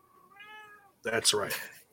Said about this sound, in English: Good old Oreo. Total nonstop kitties.